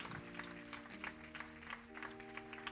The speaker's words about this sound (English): Give God a super clap offering.